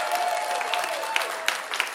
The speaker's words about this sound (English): Let's give the kids another round of applause.